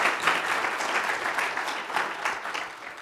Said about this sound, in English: That's good. That's a good heart. That's a good place to applause right there.